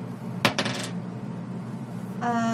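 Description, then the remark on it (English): A quick clatter of dice tumbling onto a hard table, a sharp hit followed by a few rapid rattling bounces that settle within half a second, over a low background hum. “Wait, wrong dice.”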